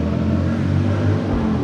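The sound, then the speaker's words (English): A Harley motorcycle engine growls loudly with a deep, throaty rumble, holding a steady low pitch with slight wavering as it revs, with no voices over it. “Yeah, it's a Harley rider.”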